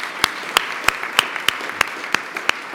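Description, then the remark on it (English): Steady rhythmic clapping, one sharp clap roughly every third of a second, over a dense, softer wash of crowd applause for the staff at a club's final event of the season. No one speaks. “So please, some applause for them.”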